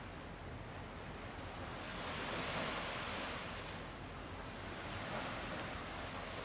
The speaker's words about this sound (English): Tuning in to the sound of the waves.